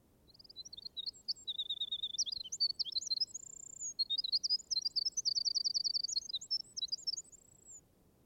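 bird, wren singing

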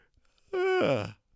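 human body sound, yawn

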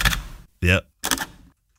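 tool, camera shutter clicking

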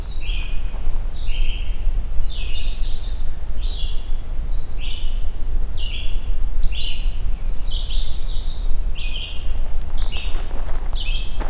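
bird, pine warbler singing

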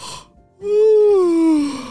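human body sound, yawning

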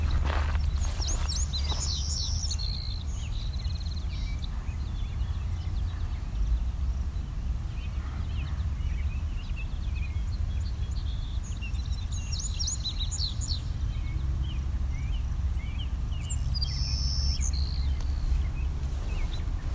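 bird, savannah sparrows calling

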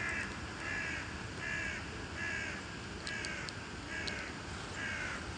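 bird, raven calling

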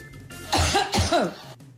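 human body sound, a person coughing

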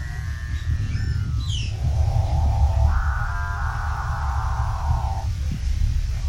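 bird, capuchinbird call

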